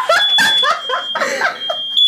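A home smoke alarm, set off by a burning pizza, sounds a thin, piercing high-pitched tone that runs steadily through the whole moment, nearly drowned by loud laughter from people.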